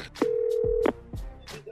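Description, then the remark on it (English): A short steady telephone tone holds for under a second, surrounded by clicks and bursts of line noise, like a phone being dialed just before a call connects. “Please gather your thoughts, if you would, as we go to the phone call of weed on the church bus.”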